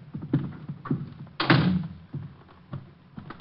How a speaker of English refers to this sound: I'm locking the door. I don't want anyone coming in.